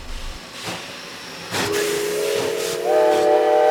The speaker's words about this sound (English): We all recognize the sound of bells ringing and train engines roaring to life. When we hear these sounds today, we may be tempted to think of traffic delays and freight trains.